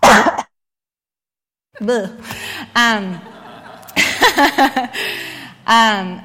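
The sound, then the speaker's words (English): A series of coughs and throat clearing, several short voiced bursts with a pause after the first, then a rapid cluster and one final clear. “Oh, I have to cough.”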